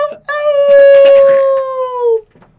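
A man lets out one long, loud, high-pitched scream that holds steady for about two seconds before sliding downward and cutting off, sounding almost like a howl.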